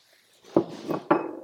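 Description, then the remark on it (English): About 5 grams of dry tea leaves pour into a ceramic vessel for brewing with a soft, continuous rattle, punctuated by two sharp clinks and a lighter tap in between. No one speaks. “So let's go ahead and pour in about 5 grams here.”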